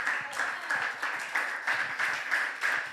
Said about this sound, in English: But the reason why only half of the room clapped is because you know that what I'm telling you is the truth.